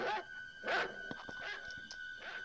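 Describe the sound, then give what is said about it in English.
A family dog in a kitchen gives two sharp barks about half a second apart, then short yips and clicks, while a thin, steady high whimper runs underneath the whole time. “get this dog out of the kitchen right now.”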